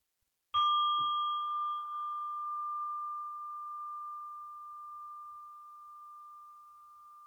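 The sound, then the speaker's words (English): A single meditation bell is struck once at the end of a meditation and rings out with a clear, pure tone, sustaining and slowly fading over several seconds in otherwise silent surroundings. “I will end the meditation with another sound of the bell.”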